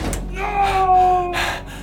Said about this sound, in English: Closing. Elevator going down. And watched the elevator door slam shut.